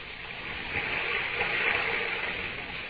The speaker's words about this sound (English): When I press my ear against the wall, I can hear the water running like it was a river under the ground.